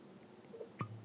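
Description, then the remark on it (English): A cork eases out of a bottle of Cavassier cognac with a single soft pop, followed by a faint glug of the cognac beginning to pour. No one speaks. “I'm going to just uncork it here. I'm just going to do this for sound effect.”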